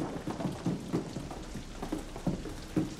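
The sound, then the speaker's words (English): A storm of hail and rain pelts down steadily in a dense, rattling patter, with a low thunder rumble underneath and regular heavier bursts of impacts. No voices are heard. “Entreat Jehovah that this may be enough of the occurring of God's thunders and hail.”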